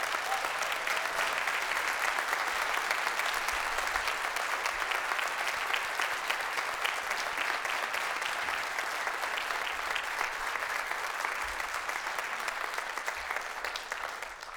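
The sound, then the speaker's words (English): Sustained applause from an audience, a dense wash of many hands clapping at a steady, loud level for around fifteen seconds, tapering only slightly at the end, with no voices standing out. “Can we get a big round of applause for Jason?”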